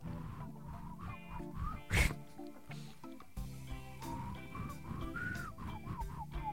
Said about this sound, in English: I can whistle like this too. It's as high as I can get. That's a tongue whistle.